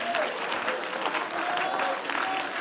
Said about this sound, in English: Stand to your feet, clap your hands, and give God the glory.